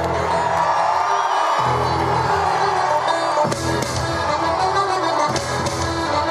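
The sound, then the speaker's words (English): A large crowd at a public event in Mayo, Ireland, cheers and roars continuously at Joe Biden's entrance, a dense wall of voices with whoops and shouts rising above it, loud throughout with a few sharp bursts of louder yelling. “And the crowd, I mean, first of all, I think half the nation of Ireland was in the crowd. And they were lit as fuck.”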